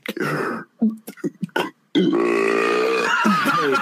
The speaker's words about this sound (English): If you want a real burp, I got one for you.